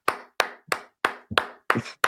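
A slow, steady run of about seven sharp hand claps, evenly spaced at a moderate tempo, each crisp and bright with a quick decay, with no voices.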